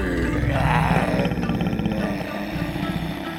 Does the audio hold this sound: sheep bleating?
no